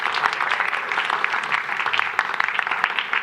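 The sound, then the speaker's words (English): A sustained round of applause from a crowd thanking the people who put the day's event together, dense overlapping claps forming a steady, fairly loud wash of sound with no voices heard above it. “Let's give them a really good round of applause.”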